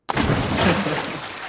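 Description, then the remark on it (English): A sudden heavy splash as a man is thrown overboard into the water bursts in loud, then trails off into a churning wash of spray lasting over a second. “Oh, And then he yeah. throws him overboard.”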